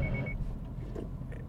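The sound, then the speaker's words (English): A car's automatic emergency braking warning gives a quick burst of high-pitched beeps as the car brakes on its own for the vehicle in front, stopping after a moment, while the low rumble of the moving vehicle carries on underneath. “That was my brakes. It was breaking for me because this idiot in front of me just didn't quite understand it.”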